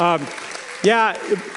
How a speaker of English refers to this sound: They deserve applause, because I'll tell you why.